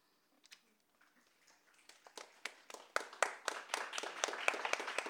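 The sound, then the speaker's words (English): A few scattered hand claps start up and quickly build into steady applause from a small audience after a reading, growing louder toward the end. “Give another round of applause”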